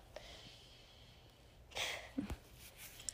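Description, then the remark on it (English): A dog sniffs under a door in a few quick, breathy bursts, short snuffling puffs clustered together against a quiet, hushed background with no talking. “He's sniffing under the door.”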